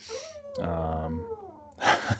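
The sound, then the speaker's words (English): A dog whines for attention in drawn-out, wavering tones that slide downward, then ends with a short, breathy huff. No one speaks. “Jeez, that dog really wants something from you. He just wants attention.”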